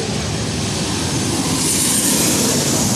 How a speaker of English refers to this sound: And a Delta 737. Yep, Delta 800.